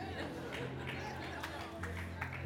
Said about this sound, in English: Thank you for the one golf clap.